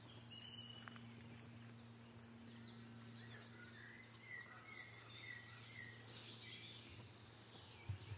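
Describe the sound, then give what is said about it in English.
Many woodland songbirds sing over one another in an overlapping, continuous chorus of chirps, trills and whistles. The voices are fairly soft, with a low steady hum beneath them and no one talking. “Listen to that cascade of birdsong.”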